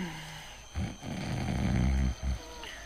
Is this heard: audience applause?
no